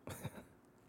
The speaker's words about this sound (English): Sorry, I have to clear my throat because I haven't really been talking a lot today. Today was one of my telework days, so I got to just kind of sit behind the computer and not talk.